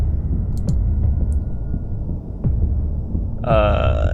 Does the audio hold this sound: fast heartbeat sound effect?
yes